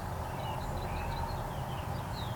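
Faint, brief high-pitched bird chirps repeat irregularly over a steady low rumble and breezy hiss outdoors, with a breeze blowing and cars driving by, and no one speaking.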